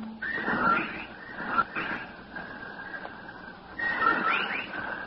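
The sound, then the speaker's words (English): A chorus of whippoorwills calls loudly and rhythmically outside a window, with sharp whistled phrases repeating in bursts over a steady, overlapping hum of other calls. No one speaks. “While outside the window, a legion of whippoorwills cried loudly and rhythmically, endlessly.”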